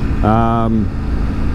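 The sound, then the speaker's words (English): A motorbike engine rumbles steadily and low throughout as it is ridden through the Hawk's Nest outside Port Jervis, New York, along the Delaware River, with a brief voiced hum rising over the noise near the start before fading back into the constant drone. “So, again, as a recap for anyone who maybe is just getting into the podcast at this point, I am on the motorbike.”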